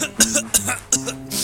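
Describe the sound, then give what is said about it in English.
A hobo with black lung coughs three times in quick, rough bursts, each hacking cough harsh and throaty, followed by a raspy wheezing breath, fairly loud with no talking. “He has a terrible cough, that hobo.”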